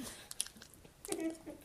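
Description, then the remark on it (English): Wet, smacking mouth noises, a voice imitating slow chewing like a cow chewing its cud, with a few soft clicks and squishy bursts over under two seconds. “Like chewing, like a cow chewing cud.”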